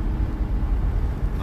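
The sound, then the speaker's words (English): Steady low road rumble fills the cabin of a moving car, a continuous muffled drone with no clear voices, holding at an even, moderate level throughout. “I'm recording in my car right now. I'm on the way to go see my homeboy D.”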